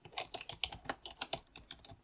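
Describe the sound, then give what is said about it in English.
Rapid, uneven clatter of keys on a computer keyboard, a quick run of sharp little clicks and taps, fairly soft, with no voices. “Everybody loves my typing.”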